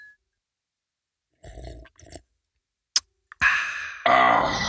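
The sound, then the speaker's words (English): After some quiet shuffling, a single sharp, bright clink of glasses rings out in a toast to the Chernobyl Martini, a Yoo-hoo and vodka drink, followed by a short tap and then a stretch of dense, hissing, gulping noise. “To the clinking of glasses.”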